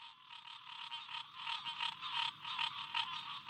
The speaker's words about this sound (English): leads me further inland along a muddy path flanked by pockets of chorusing green tree frogs.